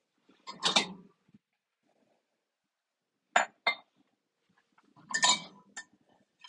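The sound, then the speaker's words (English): Pans clink and rattle against the metal hooks of a hanging rack in an apartment kitchen in three separate bursts, fairly loud, with brief quiet gaps between the clattering jangles and no one speaking. “I hang up all of my hats and pans because there's this like rack with the hooks on it that just came with my apartment.”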